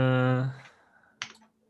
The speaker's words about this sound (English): Yeah, but I do love the clicking though. I love mechanical keyboards.